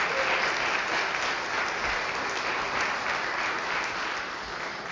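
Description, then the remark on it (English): An audience applauds the sanctuary choir, back after a brief break, clapping steadily for the full few seconds, a dense, even wash of many hands with no pauses and no voices over it, easing only slightly near the end. “Yeah, you can give them a round of applause, make them feel I was worth it.”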